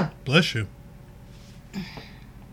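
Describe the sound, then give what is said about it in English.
A single sharp sneeze bursts out near the start, loud and breathy with a voiced edge, then quiet before a softer, brief vocal sound follows. “Bless you.”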